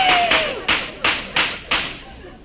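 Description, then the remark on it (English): Firecrackers set off to celebrate the 4th of July go off in a quick string of about six sharp, loud pops at a steady rhythm, with a brief falling whistle at the very start. “Look out for these firecrackers.”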